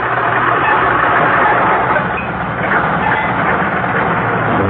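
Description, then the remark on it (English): A car engine sound effect rumbles steadily and loudly, a dense continuous roar with low throbbing, holding constant for several seconds with no voices. “That's what my car thinks of you”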